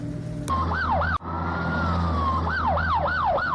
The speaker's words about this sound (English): Oh, siren sound. That means we have the optional enrichment assignment of the week.